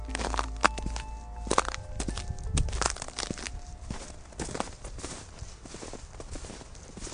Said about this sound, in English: Footsteps in the snow.